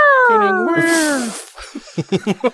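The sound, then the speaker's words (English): A human voice imitates a yowling cat with a loud, drawn-out wail that slides downward in pitch, followed by a few short, rhythmic vocal bursts. “I think the second part is the sound the kitty makes.”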